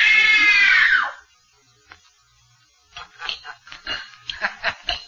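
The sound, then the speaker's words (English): A woman's loud, piercing scream of terror, given on direction during a screen test, lasts about a second and breaks off, then a pause is followed by scattered, fainter choppy sounds that may be muffled voices. “Now scream. Scream! Scream for your life!”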